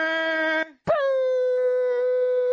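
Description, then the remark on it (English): Two loud, blaring air horn blasts, a short one followed by a brief pause and then a longer, steady held blast with a buzzy, harmonic-rich tone and no talking. “I was just hitting the air horns.”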